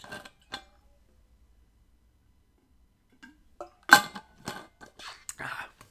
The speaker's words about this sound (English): excuse me for one moment while I take a sip of water.